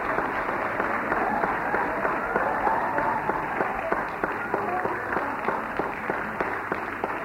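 An audience claps steadily for several seconds, a dense, even wash of many hands with sharper individual claps popping through, holding roughly the same loudness throughout.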